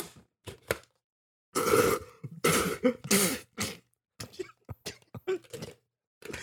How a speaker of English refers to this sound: I heard like a knocking sound and then spit. What was that? I wouldn't go down. It just wouldn't go. I've hit my soda threshold. I just spit all my soda into a candle because it was the only thing I had on my desk.